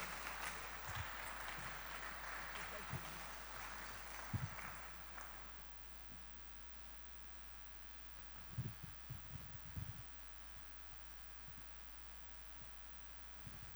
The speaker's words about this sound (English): Please, if you want to clap, then you want to clap well.